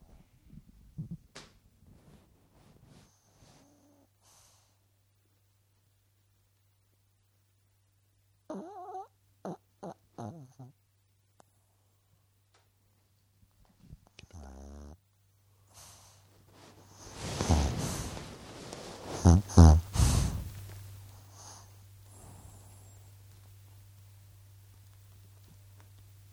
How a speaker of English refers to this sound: Can you hear the dog snoring on the mic? Put the mic next to her.